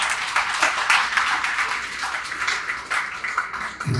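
Sustained applause from an audience for Glenn Rufrano, a real estate CEO being introduced as a guest: a dense, steady wash of many hands clapping at once for about four seconds, with no voices over it.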